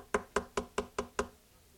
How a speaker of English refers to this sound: One day, while I was knocking on doors, knocked on a door.